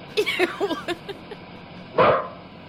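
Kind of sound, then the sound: animal, dog barking and yipping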